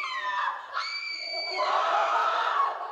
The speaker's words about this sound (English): Roars of laughter emanated from the pavilion. Suddenly, something changed. A woman was screaming horrifically while the others laughed.